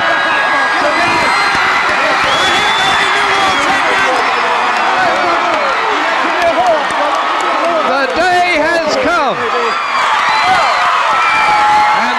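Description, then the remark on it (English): A huge crowd of 50,000 wrestling fans, standing, roars continuously as a new world heavyweight champion, Kerry Von Erich, is crowned and the wrestlers pour out of the locker room. A dense wall of overlapping shouts, cheers and whoops stays loud and steady from start to finish. “50,000 fans standing and roaring.”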